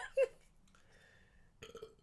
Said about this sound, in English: Yeah, and then you have to burp, too. Oh, that's, my God. You have to burp, too.